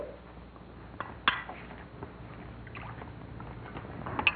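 Champagne pours into a glass with a steady, fizzy splashing hiss, broken by a bright clink of glass early on and another near the end. No one speaks.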